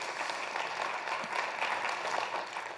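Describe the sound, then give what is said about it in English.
An audience breaks into steady applause, a dense wash of many hands clapping at an even, sustained level with no voices standing out. “I love that's clap-worthy for sure.”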